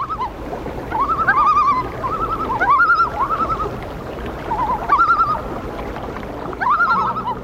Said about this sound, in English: and all the things that I have broken, all the love I've left unspoken, echo in the loon's libretto. Hoo-ha-ha, hoo-ha-ha, hoo-ha-hee.